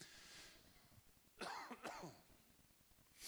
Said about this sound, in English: I've been coughing for a solid month. And so I'm going to try not to cough into the microphone, although I've already forgotten about that and coughed twice.